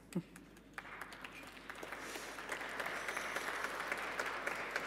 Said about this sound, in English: Thank you, brave applauders.